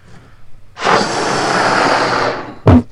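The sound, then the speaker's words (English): A long, steady breathy blow of air lasting nearly two seconds as someone blows up a balloon, ending in a brief louder puff or squeak. No one speaks. “He's blowing a balloon up.”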